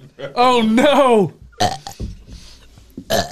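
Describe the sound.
A loud, drawn-out voiced burp lasting nearly a second, its pitch wobbling as it rolls out, followed by short bursts of voices and laughter.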